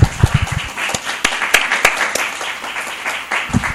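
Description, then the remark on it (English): An audience applauds the speakers steadily, a dense patter of many hands clapping at once with a few sharper claps standing out, sustained for several seconds. “Let's give our speakers a real good round of applause.”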